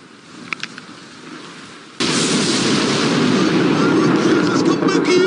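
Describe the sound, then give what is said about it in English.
A lightning strike on rocky ground in Sydney: after a couple of seconds of quiet with a few faint clicks, it lands with a sudden, loud thunderclap that opens into a dense, roaring rumble lasting to the end. “There was also this amazing moment when a couple saw lightning strike right in front of them in Sydney.”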